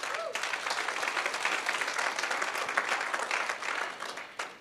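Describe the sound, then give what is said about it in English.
A church crowd applauds the Awana teachers steadily, many hands clapping in a dense, even wash of sound that stays fairly loud throughout and tapers off slightly at the end. “So what we are teaching them, you see, let's give our teachers a round of applause.”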